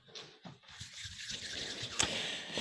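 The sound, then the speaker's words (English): Dice are shaken and rolled: a soft, continuous rattling hiss with a few brief clicks, including one sharper tap near the end, at a low level with no voices. “And this is the part where I get my dice out.”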